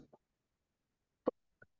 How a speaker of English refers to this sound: Sorry, I just caught me mid-cough there.